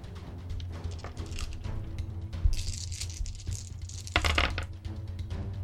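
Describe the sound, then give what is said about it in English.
Seven dice rattle and clatter for several seconds, rolled for a Might athletics roll that comes up with no successes: a busy scatter of sharp plastic clicks with a couple of louder tumbles, and no voices over it. “So roll me might athletics. Nice. 7 dice.”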